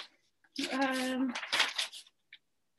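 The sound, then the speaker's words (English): Rustling of paper sheets being shuffled in a few quick, scratchy bursts, with a short voiced hum or murmur near the start. “Sorry, I have so many pieces of paper because there was so much stuff said.”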